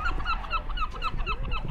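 Seagulls squabble noisily at a seaside pier over who will sit on the lifeboat station roof. Their harsh, nasal calls overlap in a rapid, continuous chorus of squawks with no pauses between them.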